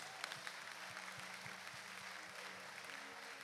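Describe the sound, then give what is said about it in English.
A crowd claps continuously in a dense, steady wash of applause, with a regular low thumping beat pulsing underneath at a brisk, even tempo. “If you are not clapping, may God stop.”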